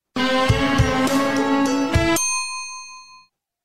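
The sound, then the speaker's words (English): About two seconds of a country song play as a clip in a name-the-tune quiz, with full, steady chords and a few sharp drum hits, then the music cuts off abruptly and leaves a ringing tone that fades to silence. “Here is your second 2 second tune.”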